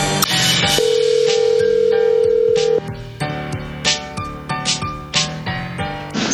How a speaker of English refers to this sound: All right, let's see. Phone's ringing. So far, we good.